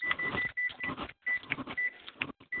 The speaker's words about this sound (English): Okay, now somebody's just buzzing. Sound like somebody's using a microwave.